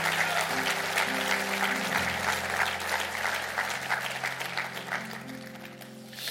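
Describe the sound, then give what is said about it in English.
An audience claps their hands in a dense, steady burst lasting several seconds, while low sustained keyboard chords hold and shift underneath. No one speaks. “Clap your hands and receive the word of the Lord today.”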